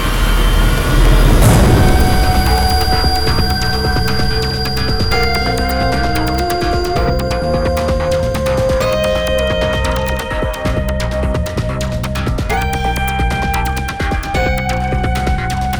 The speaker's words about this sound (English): Did that helicopter sound close?